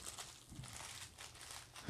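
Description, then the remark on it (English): A crinkly plastic ramen noodle bag being crushed and broken up, giving a steady stream of dry crackling and crunching with a soft thump near the end. “Probably should have broke it up first, no?”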